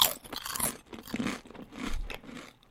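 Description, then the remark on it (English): Loud, repeated crunching of an orange, rough-textured Dorito tortilla chip being bitten and chewed, a series of sharp brittle cracks in an uneven rhythm that gradually softens, with no talking. “So number three is a Dorito.”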